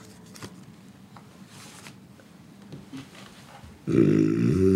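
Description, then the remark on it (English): After nearly four seconds of quiet low rustling, a person makes a loud, rough, throaty snoring imitation: a buzzy, voiced rattle that holds steady through the end. “So you're snoring?”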